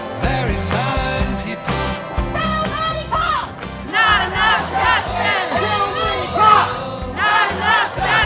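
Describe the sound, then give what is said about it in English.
A large crowd at an active protest scene roars and chants outdoors, many voices shouting together in loud, rhythmic surges that rise and fall continuously, dense, with no quiet gaps. “But as you can see, it's still a very active scene. There's still a lot of people around.”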